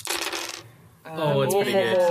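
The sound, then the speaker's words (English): Dice clatter across a hard surface in a short burst, rolling a total of 7, go briefly quiet, then give way to a louder, pitched ringing rattle that carries on to the end. “All right, so I rolled 7.”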